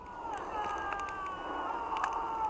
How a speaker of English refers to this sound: those little people yelling, all that stuff, these are the credits of a game I just played called Pendragon, and there are multitudes of choose-your-own-adventure moments in this game.